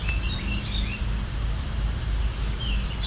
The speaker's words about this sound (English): Trying the full repertoire of songs that he has. Possible this is a immature bird.